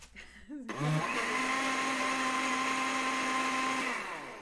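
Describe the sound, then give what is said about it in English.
A blender motor in a kitchen in the morning, making a green smoothie of apple chunks, lemon and spinach, spins up after a brief clatter and whirs at a steady high pitch for about three seconds, harmonic tones holding constant, then winds down as it's switched off. “In the morning, in the kitchen, Ashley makes herself a green smoothie.”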